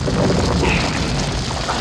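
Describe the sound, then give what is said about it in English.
A deep, continuous rumble with heavy low-end roar and gritty texture, steady and loud throughout, like a massive giant boulder rolling, produced by the back tire of a station wagon coasting down a road and gathering speed, recorded with a microphone near the tire. “I hung out the back and put a microphone near the back tire of the station wagon, and we just coasted down this road, and as the car accelerated, it gave a sense of gathering speed, and it that ended up being really the basis for the giant boulder.”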